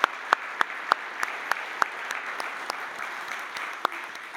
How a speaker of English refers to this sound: So can we just get a round of applause for all the mothers in the room this morning, in every way, in every form.